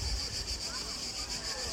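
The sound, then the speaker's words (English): Cicadas drone in a continuous high-pitched buzz that pulses in quick, regular waves, over a low, rumbling wind-like background, heard while on holiday. “You can probably just about hear my voice over the cicadas.”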